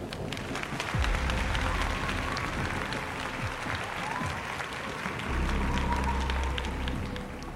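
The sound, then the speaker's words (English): A large crowd cheers and hollers over dense, steady applause in response to a man's shouted speech, the noisy roar swelling louder near the start and again toward the end, with occasional whoops rising above it. “His words caused the crowd to return his enthusiasm, many of them hooting and hollering.”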